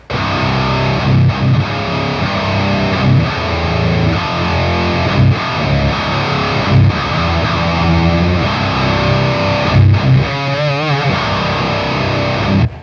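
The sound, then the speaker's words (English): A heavily distorted electric bass guitar plays a loud, gritty riff with thick low end and buzzing upper harmonics, notes chugging with brief pauses and a wavering, warbling passage near the end. “Actually, let's go ahead and hear it real quick before we get into pedals, if that's cool. Yeah. Just hear your bass tone.”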